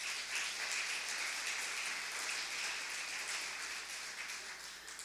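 An audience claps together as a clap offering to the Lord during a morning service, in a dense, steady wash of applause that holds at an even, fairly loud level for several seconds, with no voices heard over it.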